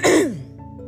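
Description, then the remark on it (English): A single short throat clearing, a raspy burst that drops in pitch and fades within a second, leaving a faint low hum behind it. “Sorry, I have to clear my throat.”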